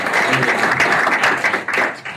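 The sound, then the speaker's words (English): An audience at a Bitcoin event applauds, a dense, steady wash of many hands clapping at once with a bright, crackling texture, loud throughout and tapering slightly at the end. “So everybody give yourself a round of applause here for coming out today.”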